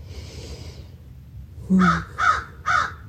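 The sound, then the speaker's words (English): Three loud, harsh crow caws in the morning in quick succession, evenly spaced, following a brief soft hiss; no one speaks. “Let's take some time to be with the crows here.”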